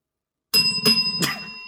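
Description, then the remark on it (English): A bright bell is rung twice in quick, sharp strikes, each leaving a sustained metallic ring that lingers to the end, with no talking. “Two bells means no.”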